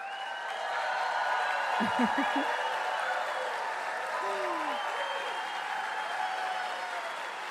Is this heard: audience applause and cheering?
yes